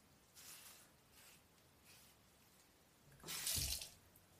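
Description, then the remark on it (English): Faint splashes and trickles of water come in short bursts, ending in a louder, fuller rush of water near the end, as a little water is used to wet hair. No one speaks. “So with a little bit of water, it adds some weight to the hair.”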